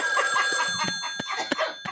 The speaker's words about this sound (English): the phone is ringing.